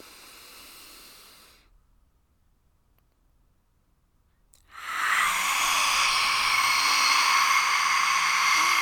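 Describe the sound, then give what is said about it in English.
A forceful, drawn-out lion's breath exhale, tongue stretched toward the chin, rushes out of the throat as a loud, breathy hiss, lasting several seconds after a silent pause that follows a softer breath. “So on three, you know, do a lion's breath with me.”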